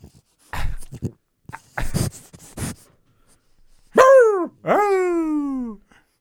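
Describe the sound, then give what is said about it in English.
A dog named Fritz, urged to talk to the crowd, lets out a few short, rough barks and grumbling huffs, then two loud, drawn-out vocalizations that slide downward in pitch like whining howls. No one speaks. “Hey, talk to the crowd, Fritz.”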